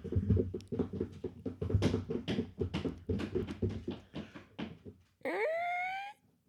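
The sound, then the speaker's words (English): A person dressed as a puppy imitates a puppy whimpering, making a quick run of short, breathy vocal yelps before finishing with one long, rising whine. “I'm dressed as a puppy.”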